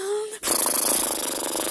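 A long, loud raspberry blown with the lips, a buzzy, sputtering flutter lasting over a second, right after a brief voiced hum. There is no other talk.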